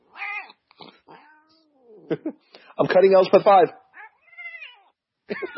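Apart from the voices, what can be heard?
angry cat meowing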